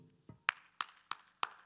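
Four sharp hand claps in praise at a preacher's call to clap, in a steady, evenly spaced rhythm, each a bright crisp burst, preceded by a soft low thump. No one speaks.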